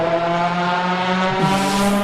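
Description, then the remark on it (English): A Chevy Cruze race car engine roars loudly and steadily, its pitch holding high with a brassy, trumpet-like tone before shifting briefly as it revs on, no voices present. “They actually race these in Europe and around the world.”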